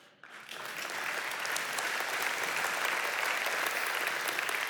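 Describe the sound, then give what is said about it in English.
A church audience breaks into applause during a sermon, many hands clapping in a dense, steady wash that swells within the first moment and holds at an even, loud level throughout, with no voices over it. “And I'm glad you're clapping, because that means we will never come off the mission either.”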